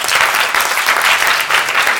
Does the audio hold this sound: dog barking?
no